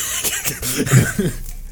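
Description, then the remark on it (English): A voice performs a character's short fit of rough, hacking coughs, three or four quick bursts, trailing off into a strained, throaty breath. “Dwellweather coughs and shakily starts to push himself up at the ground before falling again”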